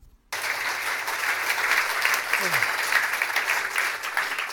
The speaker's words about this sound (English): Always feels like a really long walk that. You're always thinking, will the applause last?